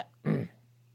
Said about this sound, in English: Have a quick sip of this drink, parched.